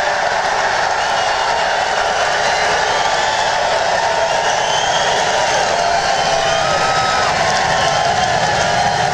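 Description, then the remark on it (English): A large crowd at a Donald Trump rally in Montana cheers and applauds continuously for about nine seconds, a loud, dense, steady roar of clapping and shouting with no break and no clear single voice rising above it. “Yes, the Montana crowd approves of the term ass-kicking.”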